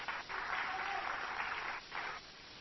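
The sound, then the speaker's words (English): A crowd claps in a dense, steady burst of applause that briefly dips twice before picking back up, with no voices over it. “And everybody clapping don't have attitudes anymore.”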